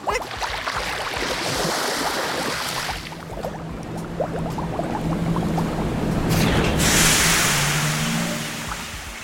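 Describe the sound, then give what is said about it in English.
Water churns and splashes steadily while a low motor drone hums underneath, as a tiny submarine pulls up on the Pflugerville Ocean for a pickup; the sloshing swells louder toward the end. No voices. “Is that a tiny submarine that just pulled up and a small person about your age that just welcomed us aboard?”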